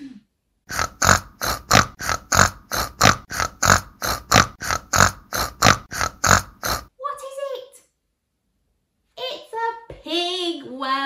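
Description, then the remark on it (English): A pig grunts and oinks in a rapid, steady series of about sixteen loud snorting bursts, followed by a few higher voiced squeals or speech-like sounds after a brief pause. “Can you say, put your nose up, oink, oink, oink, oink, oink, oink.”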